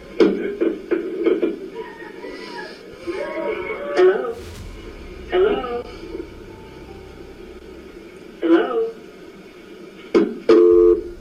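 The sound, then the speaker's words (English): A quick run of short electronic keypad beeps from a cordless landline phone being dialed to call 911, followed by muffled voices and a few more tones, ending with a steadier two-note beep. “managed to grab the cordless landline and she dialed 911 at 5:13 p.m.”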